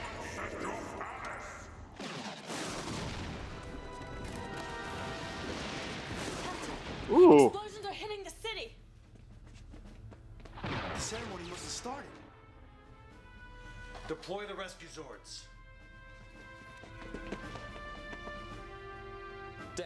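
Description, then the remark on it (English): A handful of booming blasts go off at irregular intervals, the loudest striking sharply near the middle, with a busy, tonal background and some voices running underneath. “The explosions are forming some kind of a pattern.”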